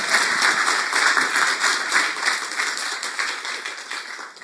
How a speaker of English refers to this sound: All right. Let's clap for her. Thank you.